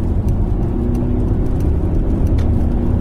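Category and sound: vehicle, car engine revving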